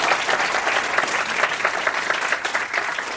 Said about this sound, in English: Thank you. Thank you. Round of applause.